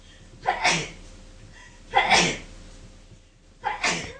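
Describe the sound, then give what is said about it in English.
Three sharp sneezes in a row, evenly spaced about a second and a half apart, each a loud burst with a quick breathy onset, against a faint steady background hum. “Bless you”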